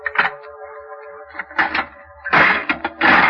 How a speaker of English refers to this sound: I opened the door.